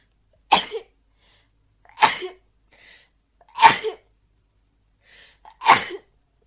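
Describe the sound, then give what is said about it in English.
Four sharp, explosive sneezes in a row, evenly spaced about a second and a half apart, each with a quick breathy burst and short tail, fairly loud with no talking. “Oh my god, I need to sneeze again.”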